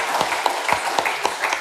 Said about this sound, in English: I think round of applause for my panellists. Thank you very much.